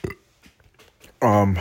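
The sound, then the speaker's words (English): A sharp, brief hiccup pops up at the start, followed after a quiet gap by a louder, throaty voiced hiccup near the end. “I got the hiccups too, fuck.”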